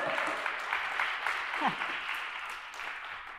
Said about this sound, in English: You got to pray for us, please, okay? Don't clap, pray.